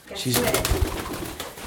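Pigeons coo close by in low, throaty warbles, with soft clatters and a steady outdoor hiss underneath.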